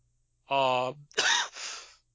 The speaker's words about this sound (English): By the way, guys, that's a perfectly ordinary cough I just had.